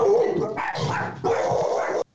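A dog barks loudly, a few long, rough barks running almost back to back over about two seconds before stopping abruptly.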